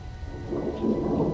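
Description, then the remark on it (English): Steady rain pours down with a low rumble of thunder beneath it, a dense, continuous wash of sound that swells slightly louder midway through. No voices are heard. “I shivered, but maybe it was just the rain.”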